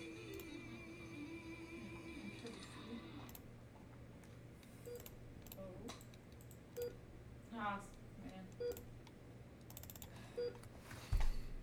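Scattered keystrokes tap at an irregular pace on a computer keyboard, soft, over a steady low electrical hum, with a slightly louder clack near the end.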